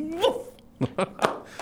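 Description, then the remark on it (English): A human voice imitates a lion's growl in the style of Bert Lahr. A rising sung note gives way to three or four short, gruff, rhythmic bursts, fairly loud. “I'd command each thing, be it fish or fowl, will ruff and a ruff and a royal growl.”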